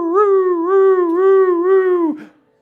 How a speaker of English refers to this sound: And then suddenly, out of nowhere, suddenly, the sound of sirens.